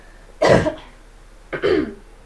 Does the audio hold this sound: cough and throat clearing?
yes